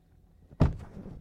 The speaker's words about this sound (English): You want to close the door?